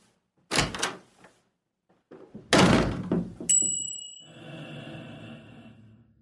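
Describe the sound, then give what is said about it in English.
A door slams hard twice, loud, with a short pause between, as someone is thrown out of a house. After the second bang comes a thin high ringing tone, then a low steady hum that fades out. “I need a door slam like right now as I throw you out of the house.”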